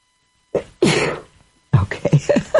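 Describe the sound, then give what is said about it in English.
A single loud sneeze: a short catch of breath, then a harsh, breathy burst. After a brief pause, a voice follows with a few quick vocal sounds. “I was waiting for the next sneeze. They usually don't come in ones.”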